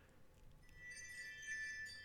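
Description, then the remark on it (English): Wind chimes tinkle and shimmer, several bright metallic tones ringing and overlapping as they sustain, steady over a soft background hiss, with no voices. “That's the sound it made it when we shifted. Be warned. Wind chimes.”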